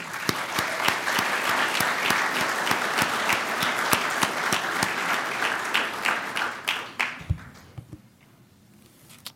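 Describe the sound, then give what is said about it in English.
A church audience gives a round of applause on Easter, celebrating the Lord's resurrection, for those who help make the service happen. Steady clapping from many hands thins out into a few scattered claps before falling quiet. “I'm just so grateful for all those who have come and come every week but make this happen, and so I'd just like to give them a round of applause.”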